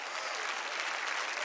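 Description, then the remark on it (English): An audience at a church service claps their hands together at the preacher's call, a dense, steady burst of applause with many overlapping claps sustained at even loudness throughout, with no voices standing out. “Somebody clap your hands and say, "I'm ready for the next level."”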